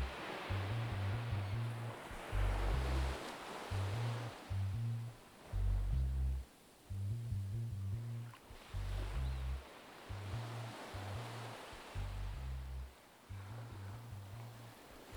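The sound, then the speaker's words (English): Gentle, warm waters of Faraway Bay wash in and out over the feet of someone walking along a beach, in soft, rolling swells of hiss, steady, with a repeating low rhythmic thump running underneath throughout. No voices. “And as you walk, the warm waters of Faraway Bay calmly lap over your feet.”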